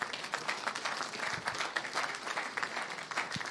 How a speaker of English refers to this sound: You can take your seats again. Just give each other a clap.